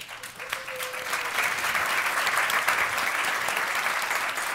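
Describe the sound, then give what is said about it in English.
An audience at a City Club event on International Women's Day applauds steadily, a dense wash of many hands clapping that holds at an even, fairly loud level throughout, with a brief faint tone near the start. “I've got a couple to get through, so I'm gonna ask you all to hold applause, although the ladies are looking good back there.”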